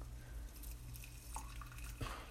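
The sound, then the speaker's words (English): Hot water at 70 degrees Celsius pours into a teapot for the first steeping of tea, a soft, steady trickle with small splashes and drips, heard quietly over a low background hum. “But let's go ahead and put some water in here, take it for the first steeping.”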